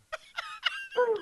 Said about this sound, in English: Oh, wow. And we've got a dog. Wow. Who is that in the background? He's happy. He's happy he's on the show.